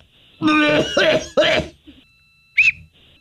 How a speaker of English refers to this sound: Oh, I just did the Heimlich on myself and... this is really weird. I coughed up the whistle.